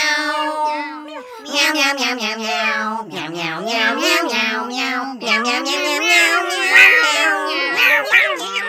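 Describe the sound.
A human voice imitates a cat, producing a rapid string of drawn-out, pitch-bending meows, fairly loud, with brief gaps between bursts.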